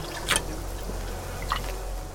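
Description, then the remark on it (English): Water is poured from a box and sipped: two brief, soft liquid sounds about a second apart, a small splash followed by a quiet slurp, over a low steady hum with no talking. “There is half a box between the three of us. I just need a little. Let's all take a sip.”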